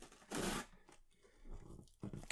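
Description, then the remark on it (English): Small scissors hack at a cardboard box to cut it open: a loud, harsh crunching burst, then softer scratchy scraping and a couple of quick snips at the end, with no talking. “I'm using like the smallest scissors possible. And it's really, really not working for me.”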